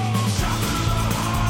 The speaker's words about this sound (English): Damn, son. I love that big scream coming into the last one.